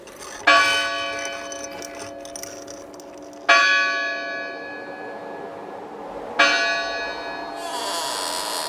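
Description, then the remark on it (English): A doorbell rings out in three resonant bell chimes, each struck about three seconds apart and left to ring and fade, clear with no voices. “So, should I just, like, ring the doorbell? Hopefully it's in working order.”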